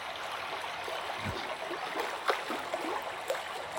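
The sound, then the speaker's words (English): A river flows with a steady, rushing wash of water, while a few soft splashes and knocks from paddles break through now and then as paddlers pass. “And here, beware, there are some paddlers.”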